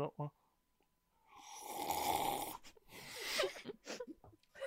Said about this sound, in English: Okay, I officially assess I cannot slurp with wine. It's all right. It's just not possible. I have coffee in my nose now.